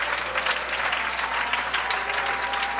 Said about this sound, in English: Can we clap our hands and worship?